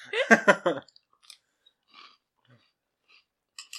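Crunchy chewing of fruit-flavored cereal: a burst of loud, crisp bites at the start, then quieter scattered crunches and mouth sounds trailing off with small pauses between them.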